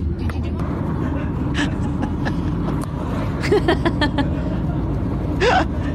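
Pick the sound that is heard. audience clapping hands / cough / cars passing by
cars passing by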